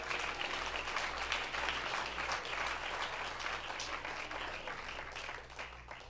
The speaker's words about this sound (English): Father, clap your hands to the Lord.